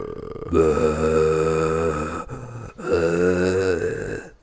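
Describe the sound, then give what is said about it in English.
A voice imitates a film character's terrible, low-breathing growl in two long, strained breaths, each rough and guttural with a buzzing low pitch, separated by a brief pause. “and she stands there, dick and balls naked, knife in hand, mouth open, making a terrible, low-breathing, growling sound.”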